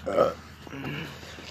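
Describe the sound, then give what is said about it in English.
A single short, loud burp, followed by a low, murmuring voice trailing off. “Casual burp.”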